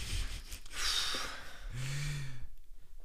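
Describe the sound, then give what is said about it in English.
Loud sniffling right at the microphone: a few breathy nasal inhales run together, ending in a short, shaky voiced sigh, as someone recovers from crying. “Start sniffling your ear.”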